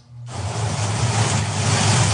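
A car cruising at about 45 on highway 95 in the rain, a steady engine drone under a broad, hissing wash of tire spray that cuts in after a brief quiet moment and holds loud.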